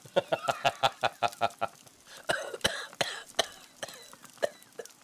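A person laughs in a quick run of rhythmic, voiced bursts, then breaks into several harsh, irregular coughs, all fairly loud with no talking.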